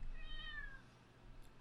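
A single short cat meow with a slightly falling pitch, fairly soft, from a cat hanging over an edge, over a steady low background hum. No one speaks.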